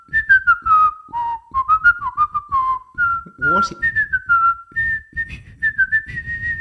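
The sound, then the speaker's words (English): A person whistles a short, steady melody of sustained tones, mimicking a washing machine's end-of-cycle tune; the whistle moves through several pitches with brief gaps, and a voice briefly speaks partway through. “The other thing that can pack its nags about washing machines is when it finishes, it's like the hymn of death.”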